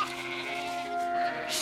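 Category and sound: animal, sheep bleating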